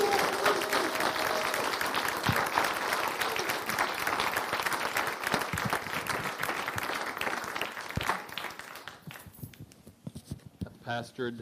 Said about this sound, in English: I'm not sure I've ever gotten a welcome quite like that with people standing and clapping. So you're welcome to continue if you want to, and you know.